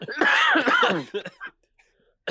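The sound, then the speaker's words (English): Several people cough and clear their throats in a loud cluster of bursts mixed with laughter, then a brief pause before another cough starts. “Why are we all coughing?”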